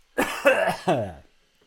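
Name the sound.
cough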